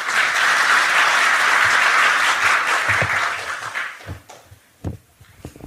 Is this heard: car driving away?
no